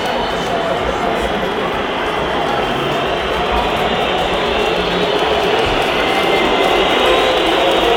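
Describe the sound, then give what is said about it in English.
A stadium crowd of Braga football fans keeps up a loud, steady wall of whistling and jeering, a dense roar with a shrill high edge that never lets up over the whole stretch, as they try to put off an Estoril penalty taker. “Suddenly the Braga fans have come alive with the whistles.”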